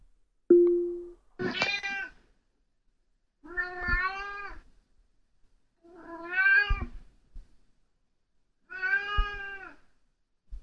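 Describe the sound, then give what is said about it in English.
A cat meows four times in a row, played by a smart speaker (Alexa) through a skill called Box of Cats, each call a drawn-out, wavering cry spaced a couple of seconds apart, loud, with a short tone at the start and no talking. “Meow.”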